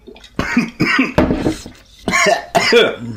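A fit of harsh, choking coughs in rapid bursts, several loud hacking spasms with strained gasps between them, no speech.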